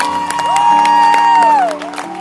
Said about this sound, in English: Yes, but the original is the original. Clap again for the original.